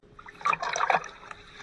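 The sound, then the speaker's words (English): Rescue workers wading through waist-high floodwater in northeastern Italy: a brief cluster of churning, sloshing splashes builds for about half a second, then settles into faint trickles and drips. No one speaks. “You're hearing there the sounds of rescue workers wading through waist-high flood water that has devastated areas in northeastern Italy, so far claiming the lives of 14 people.”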